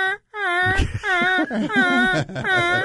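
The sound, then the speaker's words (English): A goose call used for goose hunting is blown in a run of loud, reedy honks that waver and bend in pitch, several notes coming in quick succession with a low rumble underneath. “It is an annoying call. brum. That's a goose coming. You can hear him.”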